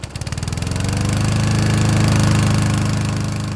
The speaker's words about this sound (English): Armed with lawnmowers, weed whackers, and a desire to help, the brothers of Kappa Lambda Chi went to work, doing whatever they could to improve the look of the historic cemetery.